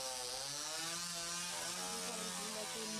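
A chainsaw runs continuously in a film scene, its engine droning with a buzzing, harmonic whine that wavers slightly in pitch without cutting out. No voices are heard, only the steady mechanical roar.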